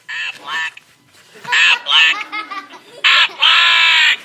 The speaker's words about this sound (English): What do you guys think it is? A duck. A duck, the Aflac duck.